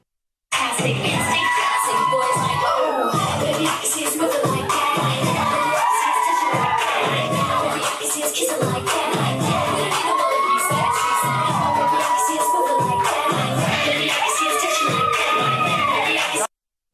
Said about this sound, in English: What are they hooting and hollering about?